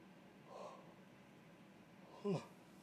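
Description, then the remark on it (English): A person yawns: a soft breathy intake, a pause, then a short, louder voiced exhale, with no talking around it. “I'm gonna put like a running like count, a ticker every time I fucking yawn in these upcoming episodes, maybe one day.”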